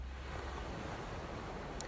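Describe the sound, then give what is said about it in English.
Ocean waves wash in a steady, soft roar of surf with no distinct break over the short stretch, fairly quiet and even throughout, with no voices. “So in this podcast space, I continuously bring us back to that rhythm through my voice, the stories I share, and the ocean waves.”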